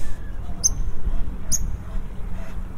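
An agitated bird gives two sharp, high-pitched chirps about a second apart, each quick and piercing, over a steady low rumble of background noise.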